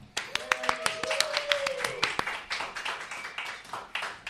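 A small group claps, sharp irregular hand claps running steadily for several seconds at moderate volume, with a faint whistle-like tone and murmuring voices mixed in.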